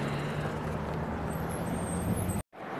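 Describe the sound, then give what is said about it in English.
A bus rumbles on the road, its steady low engine drone mixed with broad, hissing traffic noise, loud and continuous until a sudden brief dropout near the end. “The bus is coming.”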